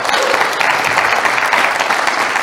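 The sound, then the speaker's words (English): A crowd at a revival meeting claps steadily in a dense, continuous wash of applause, loud and sustained throughout with no voices standing out. “Let's give these people a big hand.”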